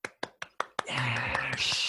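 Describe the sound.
Five sharp, evenly spaced claps or knocks give way to a loud, sustained wash of cheering voices that fills the rest of the moment.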